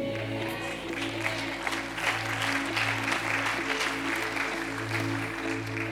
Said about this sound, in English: Man, we're clapping and we haven't even started with the scripture.